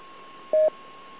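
A single short DTMF touch-tone dialing beep, a clear dual-pitched burst lasting a fraction of a second, sounds over a steady hiss and a faint constant hum on an autopatch line used for making 911 calls.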